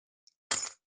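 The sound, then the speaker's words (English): A faint metallic tick, then a bright jangling clatter of metal keys dropping onto a surface as a person tests whether the keys stick to them, to see if they are magnetized; lasting about a quarter second before silence. “I'm going to take these keys and see if”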